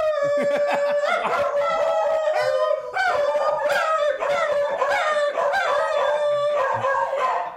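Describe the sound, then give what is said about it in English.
An old dog howls loudly in long, wavering tones, pausing briefly before starting again, with rapid, heavy huffing breaths audible between and beneath the howls. No one speaks. “No, he's doing that because he's breathing, like, heavy. Yeah, he's doing that. I swear, if you give my dog a heart attack, he's an old man.”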